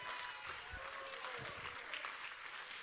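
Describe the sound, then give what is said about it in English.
A church audience claps their hands on a Wednesday night, a dense, steady wash of applause that stays level from start to finish, with no voices standing out. “There ought to be a lot more hands clapping on a Wednesday night.”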